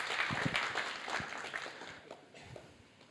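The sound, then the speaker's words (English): An audience applauds with a dense, steady patter of many hands clapping at once, fairly loud at first and gradually thinning out and fading over the final second. “Just give these guys a round of applause for their wonderful effort.”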